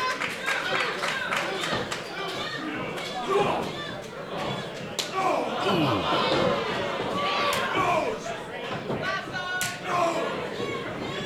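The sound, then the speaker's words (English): A wrestler in a wrestling ring strikes his opponent with a flurry of chops: a series of sharp, smacking slaps ring out in quick bursts, loud and cracking, over a steady roar of crowd noise with voices murmuring underneath. “Duke comes back with a flurry of chops.”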